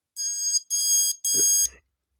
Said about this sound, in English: I've been buying more and more of these power outage outlets. So you basically plug it into your outlet, and if the power were to go off, you basically have an alarm that goes up.